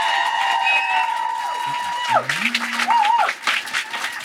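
An audience at a live venue event applauds a guest, a dense patter of clapping that swells after the first couple of seconds, while sustained electronic tones glide and bend over it.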